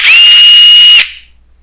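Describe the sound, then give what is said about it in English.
A power drill whines loudly at a steady high pitch for about a second, then cuts off abruptly and its sound quickly fades away. No one speaks. “What was that, a drill?”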